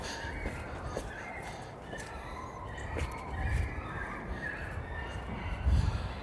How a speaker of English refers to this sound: What on earth is going on over there? I think those are dogs you can hear.